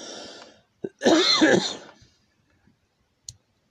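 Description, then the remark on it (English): A loud cough from a speaker at a microphone fills about a second, preceded by a softer breathy rasp and a sharp click, with another faint click near the end. No one speaks. “Sorry, I'm coughing.”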